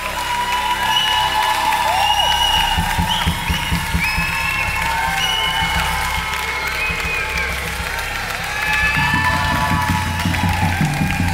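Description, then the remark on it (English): A crowd claps their hands and shouts for joy steadily for about eleven seconds, with loud sustained applause, scattered whoops and rising shouts of many voices over a dense, continuous roar. “30 seconds, clap your hands and shout for joy.”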